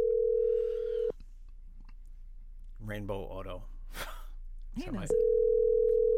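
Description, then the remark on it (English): A steady electronic phone tone hums on an outgoing call, breaks off for about a second as a voice answers and speaks briefly, then the same tone returns loud and unbroken. “He's not answering.”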